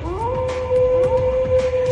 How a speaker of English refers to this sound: There's always that howl, and then suddenly there's a new generation, and you get to control like a litter of smaller versions of your animal.